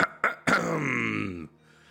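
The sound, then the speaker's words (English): A person clears their throat: two quick, gritty rasps followed by a longer voiced, slightly falling 'ahem', loud and alone with no other talk. “I clear my throat.”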